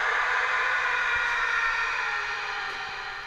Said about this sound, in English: This is the Howie Long scream just with some added reverb and delay. We're going to see how this sounds.